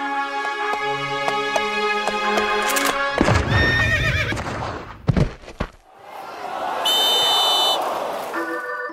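A horse whinnies loudly and at length, with sharp hoof clip-clops clattering. A second, higher whinny follows after a brief noisy stretch, and no one speaks.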